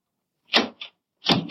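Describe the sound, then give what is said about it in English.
Two bursts of rattling and clunking from a locked door, like a handle being jiggled and the door yanked against a catch that won't give, with a short pause between tries and no voices. “Open the door easy.”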